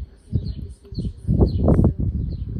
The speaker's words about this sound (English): There's some more birds here.